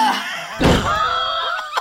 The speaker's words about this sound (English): Drayla, Ishii, you take 4 bludgeoning damage as the 2 double doors swing open.